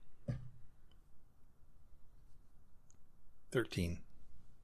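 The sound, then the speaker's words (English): A twenty-sided die is rolled in a tabletop role-playing game and lands on 13: one sharp click, then after a pause a quick burst of clattering taps as it tumbles across a hard surface, fairly quiet. “Go ahead and roll a d20.”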